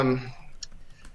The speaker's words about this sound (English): All right. No, don't step on the keyboard. That's a new one.